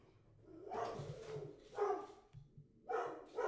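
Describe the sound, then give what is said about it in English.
A dog barks several times in uneven bursts, each bark full and slightly drawn out, heard on its own without any talking. “My dog agrees.”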